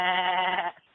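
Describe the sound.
A voice imitates a woman's dolphin-like laugh with a single loud, nasal, bleating squeal held for under a second before cutting off abruptly.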